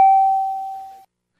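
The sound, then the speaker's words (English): A single bright bell ding rings out with a sharp strike and a clear sustained tone that fades for about a second before cutting off, loud with no voices. “Do we have any dings and whistles and bells and whistle?”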